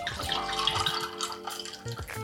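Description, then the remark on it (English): Bonacord ginger beer, 100% naturally sweetened, pours steadily into a glass, a continuous splashing and gurgling with a faint rising tone as it fills, heard alone without any talking. “And it's Bonacord ginger beer, 100% naturally sweetened.”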